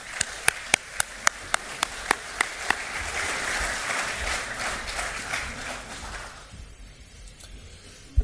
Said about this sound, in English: Let's give Mr. Lambertini a round of applause to welcome him to the stage for his keynote address.